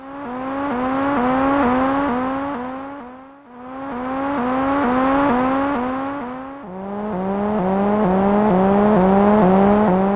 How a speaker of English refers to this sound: The sound you're hearing is being generated by a plastic, portable, almost toy-like monophonic synthesizer called the Wasp, made in 1978 by Electronic Dream Plant and was only manufactured for 5 or 6 years.